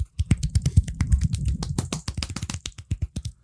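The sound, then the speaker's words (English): A running sound effect: a rapid, steady patter of sharp tapping footfalls with dull low thumps, fast and even in rhythm, heard alone without any talking. “I like how this is the universal sound for running.”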